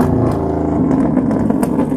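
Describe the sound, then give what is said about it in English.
Racing car engines at Daytona roar loudly and steadily for a couple of seconds, a dense, throaty mechanical drone with a rising rev, with no voices. “got these racing cars here. This is Daytona.”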